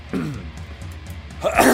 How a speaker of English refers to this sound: Let me clear my throat.